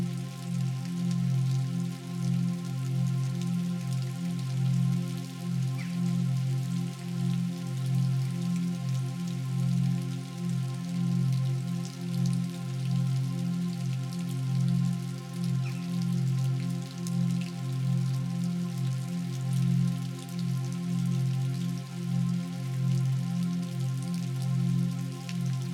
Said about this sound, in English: You close your eyes. And listen to the rainfall. You close your eyes and listen to the rainfall.